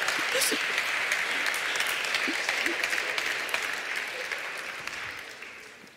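An audience claps in a steady round of applause, a dense wash of many hands sustained for several seconds before gradually thinning and fading toward the end.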